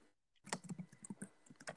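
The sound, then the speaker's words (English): Rapid, irregular clicking of keys on a computer keyboard, a flurry of typing strokes lasting just over a second after a brief quiet start, with no voices. “Hope you can hear my keyboard.”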